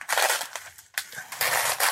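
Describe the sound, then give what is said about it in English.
Thick paper crinkles and rustles in several crisp, papery bursts with brief pauses between them, as a stiff Hallmark greeting card is handled and flexed. No one speaks. “This is some thick paper.”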